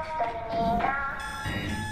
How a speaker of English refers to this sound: And speaking of Squid Game, look at this. Can you imagine having this clock right here? Shoots a little freaking dart to wake you up. I need this. I want this.